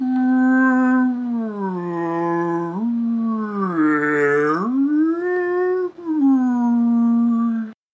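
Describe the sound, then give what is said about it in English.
A loud, sustained whale call moans continuously for about eight seconds, its rich, tonal voice sliding slowly up and down in pitch before cutting off abruptly. “Are you a mega whale from the planet”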